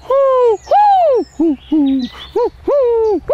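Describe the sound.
A voice imitates a pigeon's cooing: seven loud hooting coos in a quick sequence, some long and arching, others short, with the pitch shifting between notes.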